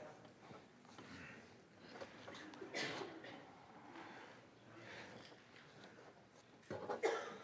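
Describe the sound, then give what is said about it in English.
A woman in the audience at a church service coughs, a burst near the middle and another sharper one at the end, each cutting through a low, steady murmur of the people around her. “I was going to say if anybody had a cough drop to throw it at you, but if you've already got one.”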